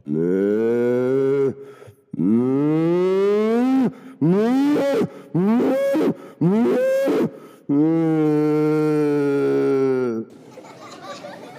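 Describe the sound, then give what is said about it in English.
Several loud, drawn-out cow moos in about six calls of varying length with short pauses between, some rising and falling in pitch; no talking. “thank you, cows, for your treatment.”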